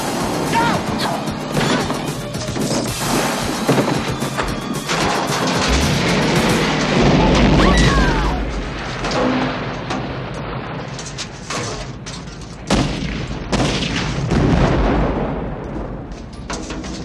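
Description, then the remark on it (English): A truck crashes into a building with barrels and sets off explosions: a loud, chaotic stretch of crashing and booming, heavy impacts and smashing debris build into sustained rumbling explosions, with sharp bangs recurring near the end, all intense. “And then, he gets it aimed and then jumps out himself, and it crashes in the building, and everything possible blows the fuck up.”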